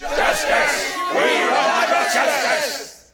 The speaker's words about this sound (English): A new noise arose from the army, like a wave starting with those nearest to me and moving toward the rear as Sir Littleman's words were passed among them. A growl of anger sounded, pierced by harsh shouts.